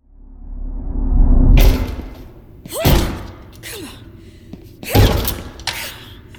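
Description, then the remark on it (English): Heavy thuds strike against a stuck classroom door that will not open, a rumbling push building to a first impact, then two more forceful blows a couple of seconds apart, loud with faint straining breaths between. “The door isn't going to open”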